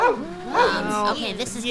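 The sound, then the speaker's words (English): A voice imitates a dog, Granny Gecko turned into a dog, giving a few loud yapping barks and whiny, sliding yelps in quick succession, with no ordinary talk around them. “I hope that you can understand dog language then, because this is your Granny Gecko.”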